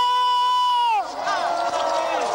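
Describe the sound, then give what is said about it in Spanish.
One voice holds a loud, drawn-out shout for about a second, then a crowd answers a call for a loud shout of joy, erupting in joyful shouting and cheering, many voices overlapping in a sustained, excited roar. “¡Demos un fuerte grito de júbilo!”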